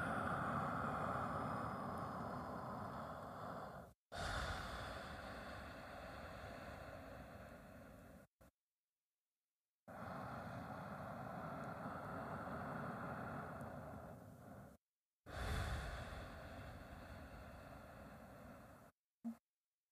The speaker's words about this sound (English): Listen to the sound of your breathing in and out.